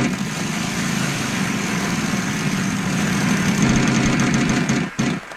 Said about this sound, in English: In the meantime, let's spin our wheel, our discount flea market wheel, and figure out what we're going to play today.